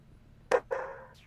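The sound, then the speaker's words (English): A dog gives two quick barks in succession, the first sharp and punchy, the second slightly longer and trailing off, over a quiet low background hum. “Sorry, my dog's barking.”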